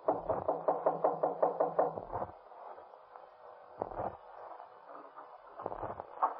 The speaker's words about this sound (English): Just go up the stairs and knock on the door on the left.